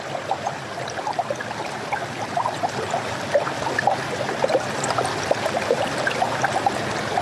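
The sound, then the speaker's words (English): A river flows steadily with small streams trickling and gurgling, a continuous bubbling water sound with frequent little splashes, fairly full, with no voices. “And here is the river, the little streams.”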